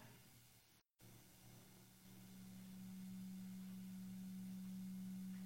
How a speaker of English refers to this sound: A little bit of a hum in there, isn't there?